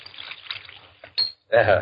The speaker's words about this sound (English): And now, a little soda in mine.